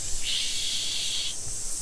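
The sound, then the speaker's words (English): A can of spray cheese is sprayed onto a wound, letting out one steady, bright aerosol hiss lasting about a second before cutting off, with a faint low rumble underneath and no voices. “I've got a can of spray cheese. I think that'll clog it up. Quick. Let me spray this on the wound.”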